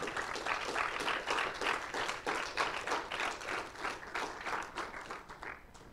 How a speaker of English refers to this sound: Come on, that is a good clapping point. Glorify God for that.